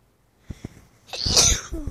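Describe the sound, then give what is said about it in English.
A person with a cold sneezes once, loud: two short sharp intakes of breath build up before a forceful, hissy burst that trails off briefly. “Oh, sorry if I sneeze.”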